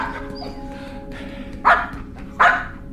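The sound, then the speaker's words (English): A dog barks twice, a second or so apart, sharp, over a steady low background hum with no one talking. “Dog! Good boy.”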